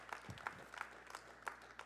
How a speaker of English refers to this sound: If you're thankful for the outpouring of the Holy Ghost, would you give the Lord a great big hand clap of praise that let Him know today, Lord, thank you that you sent the Holy Ghost.